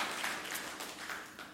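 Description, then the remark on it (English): A crowd of people clapping together, a steady, dense patter of applause that holds at an even, moderate level throughout the short stretch with no one talking. “we can clap for that, absolutely.”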